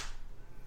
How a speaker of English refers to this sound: Okay, so then I'll do 3, 2, 1, and then we'll all do a synchronized clap. Ready? 3, 2, 1.